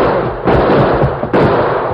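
Two loud, sharp gunshots from the Lone Ranger's gun, fired toward men across the street, ring out almost a second apart, each bursting over a dense, rumbling wash of background noise, with no voices heard.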